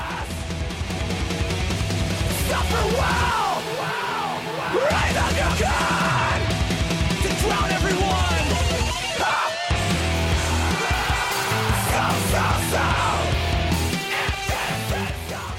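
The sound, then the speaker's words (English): Harsh screamed vocals ride over loud, dense distorted guitars and pounding drums in a fast, aggressive hardcore song, the yelling nearly continuous and pushed up front throughout. “It's a little bit easier to wrap your mind around than just pure screaming.”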